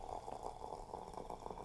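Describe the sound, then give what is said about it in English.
Tea pours from a kettle in a steady, softly gurgling stream that runs continuously for under two seconds. The sound is quiet and mid-pitched, with no voices over it. “This is going to be me pouring the tea.”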